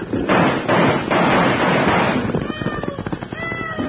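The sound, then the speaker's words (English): A loud, rapid barrage of overlapping six-gun revolver shots, fired by two riders chasing a runaway wagon on a trail, crackles for about two seconds, then thins into scattered bangs under high, wavering cries. “Yeah, they're shooting it up.”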